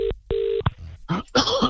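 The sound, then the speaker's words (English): Two steady electronic telephone tones sound in quick succession as a phone call is placed, the second longer, followed by a brief click and muffled voice-like noises over the line. “I'm going to get him on the phone now.”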